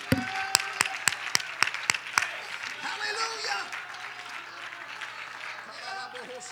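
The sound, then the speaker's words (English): An audience claps their hands to give God praise: a steady run of sharp, evenly spaced claps gives way to looser, continuous applause, with voices calling out faintly beneath it. “Somebody clap your hands and give God praise for what he's about ready to do.”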